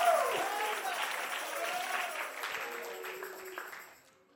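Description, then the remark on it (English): An audience claps and cheers together during a sermon, a dense wash of applause mixed with shouting voices, holding steady for several seconds before tapering off at the end. “I'm going to tell y'all, every time you stand and clap your hands and shout, it's going to make the sermon longer.”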